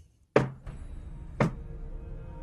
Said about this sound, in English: There is a silence and a distant knock.